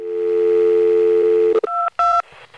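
A steady telephone dial tone hums for about a second and a half, then three short, bright keypad beeps follow, dialing 911, with no one speaking.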